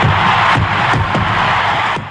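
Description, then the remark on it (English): A huge stadium crowd roars and cheers in a loud, sustained wall of sound, with a few sharp bursts cutting through the din, as Henry Aaron hits the home run making him the all-time home run champion, fireworks going off and teammates waiting at home plate. “His teammates are at home plate. And listen to this crowd.”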